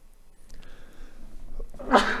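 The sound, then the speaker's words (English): A single sharp cough bursts out near the end, loud and raspy after a stretch of quiet, low breathy noise. “We don't have a cough button, sorry.”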